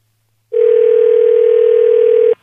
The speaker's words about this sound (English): We're going to let it go to voicemail, and then now we're going to call her back. Okay, I'm going to dial, listen in, and now you're going to take the brunt of it.